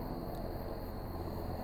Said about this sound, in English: I'm just gonna pause and let that helicopter.